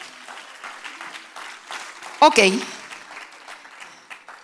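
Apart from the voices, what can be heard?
audience applause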